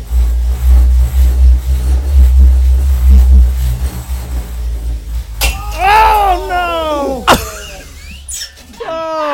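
A low rumble gives way to a sharp crash as a drinking glass falls, followed by a second loud impact. Squeaky, high-pitched vocal cries overlap the breaking sounds.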